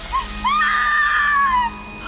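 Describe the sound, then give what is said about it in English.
A person's skin sizzles with a hiss lasting about two seconds, with a high, rising whine riding over the crackling hiss before it cuts off. No one speaks. “Outside, her skin started sizzling.”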